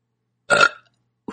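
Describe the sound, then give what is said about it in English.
A single loud, short burp, rough and throaty, lasting about a quarter second in otherwise silence, followed by the brief start of another sound right at the end. “I was expecting it to be frothy like they usually are.”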